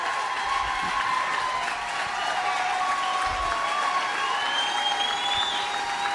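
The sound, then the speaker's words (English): A large crowd claps loudly and continuously, a dense roar of applause with scattered cheers and whistles, sustained at steady volume for the whole stretch with no talking over it. “Roaring applause.”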